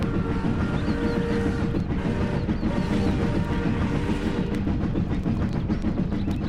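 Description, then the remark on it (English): A heavy train roars out of a tunnel, a loud, steady rumble with a deep, dense low end and rattling metallic texture throughout, with no voices. “Before he could answer, there was a vibration in the earth which quickly turned into a violent pulsation as a train roared out of the tunnel.”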